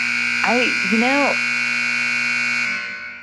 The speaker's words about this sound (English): I beat my time by a minute. I'm taking the buzzer off now.